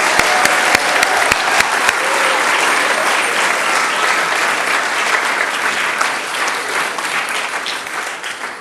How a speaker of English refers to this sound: Okay, well, that brings to the end the children's bit, and I think you agree they all did very well, so maybe we could just give them a round of applause.